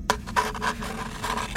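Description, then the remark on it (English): Rough rasping of Minerva's Jaunty Jeopardy Jinx Solution, an all-purpose drill file saw: a few quick back-and-forth scraping strokes in two short bursts with a brief pause between, moderately loud with no voices. “Sort of an all-purpose drill file saw to get you out of any jam.”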